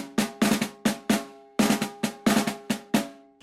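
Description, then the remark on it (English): About ten loud, resonant drum hits, some in quick pairs and some spaced out, building like a short drum roll with no talking. “Drum roll.”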